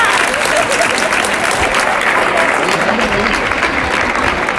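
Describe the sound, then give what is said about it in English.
A large crowd at a bullring corrida claps steadily and densely for several seconds as the first bullfighter, on horseback, comes on; a loud, continuous wash of applause with scattered murmurs mixed in. “So people are clapping the first bullfighter who's come on.”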